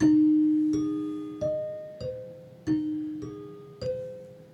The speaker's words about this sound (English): do you want to take us out by playing the chimes one last time? I will do the original version of it.